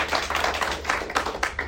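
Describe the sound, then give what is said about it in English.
An audience claps for a woman who had a baby a few days earlier, a dense, steady patter of many hands with a few sharper claps standing out, fairly loud throughout and with no voices over it. “Because, yes, clap for them.”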